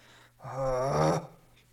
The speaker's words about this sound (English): I'm just trying not to cough really hard. That's why I'm making these strange noises.